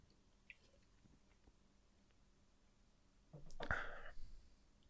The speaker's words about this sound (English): Let me drink some water.